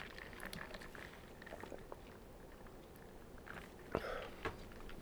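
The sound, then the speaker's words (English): Quiet mouth sounds of someone drinking water, with small wet clicks and then a couple of distinct gulps near the end, no talking. “Water is so fucking good.”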